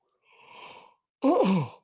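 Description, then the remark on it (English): A single human yawn: a soft, breathy intake of air, a brief pause, then a louder voiced groan that slides downward in pitch before trailing off. No talking. “Apologies for the yawns.”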